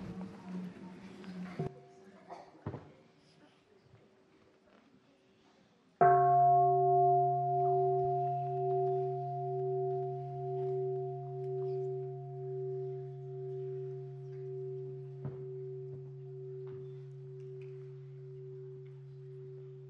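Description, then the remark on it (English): After a brief stretch of faint murmuring, a mindfulness bell is struck once for a Sangha before its first question, its deep, humming tone ringing on with a slow, wavering pulse and fading only gradually. “And let us listen to the first sound of the bell and enjoy our breathing 3 times before we ask the first question.”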